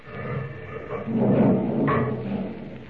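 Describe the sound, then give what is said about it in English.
A heavy stone door, a foot thick, grinds open in a continuous low, rough rumble that swells and holds for about three seconds, scraping and loud, with no voices over it. “It's open now. Wide open.”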